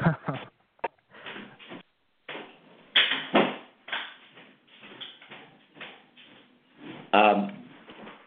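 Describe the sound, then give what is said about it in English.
A door is shut amid shuffling and handling noises, with a few sharp knocks and clunks scattered across several seconds and a louder thump near the end. “Hold on just a second while I close the door so you don't have to listen to my dog barking.”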